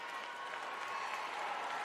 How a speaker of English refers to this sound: And everybody is clapping it up for the dude.